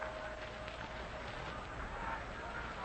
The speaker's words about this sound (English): Coming into the last half of the first inning, that round of applause you just heard was for Tommy Holmes, who will be leading off for the Braves